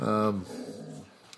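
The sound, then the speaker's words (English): Female dogs vocalizing to each other: a loud, drawn-out whining growl lasting a fraction of a second, followed by quieter low grumbling and soft whimpers that fade out. “They are female dogs, so they probably are talking about pooping to each other.”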